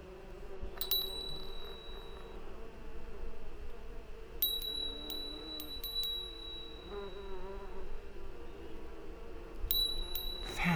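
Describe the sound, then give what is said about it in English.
A small bell, rung by a bell pull in a bell tower, tinkles in short, bright bursts: a single ring early on, a quick cluster of several jingles midway, then another near the end, over a steady buzzing background hum. “He's touching the thread, the bell pull.”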